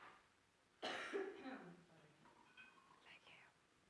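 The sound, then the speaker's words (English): A single breathy cough bursts out, then trails off into soft, whispery breaths and faint throat noises before fading to quiet. “the end of a cough.”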